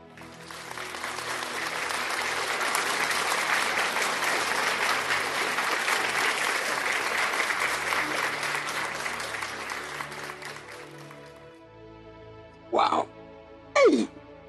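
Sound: audience applause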